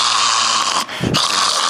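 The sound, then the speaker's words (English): A person imitates the loud snoring of a patient with an obstructed airway after taking a large amount of Dilaudid: a harsh, rasping, throaty noise with one deeper gurgling snort in the middle, with no words spoken. “They're making a sound like snoring, and no one picks up the fact that when you're snoring and you have a sick patient, what does it mean?”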